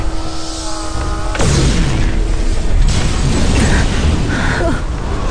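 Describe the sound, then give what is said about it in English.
Loud explosions from ordnance deployed by Irem and Arano troops in a war zone: two heavy booming blasts, about a second and a half apart, ring out over a constant deep rumble that keeps churning throughout, with crackling debris and faint mechanical whine. “They deployed ordnance!”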